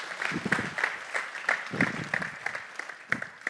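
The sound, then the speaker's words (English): An audience claps on Mother's Day, many overlapping hand claps forming a steady, moderately loud ripple of applause that continues throughout without any speech. “Yeah, go ahead and clap. You can clap for that.”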